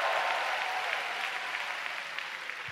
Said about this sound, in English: If you love Jesus, give him a big clap one more time. Hallelujah. Come on, make some noise.